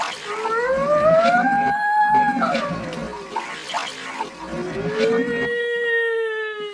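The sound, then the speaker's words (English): Alarms wail in overlapping tones that slowly rise and fall in pitch, heard in the distance and growing louder, loud and continuous for several seconds, with a hissy background and no one speaking. “I knew alarms were sounding.”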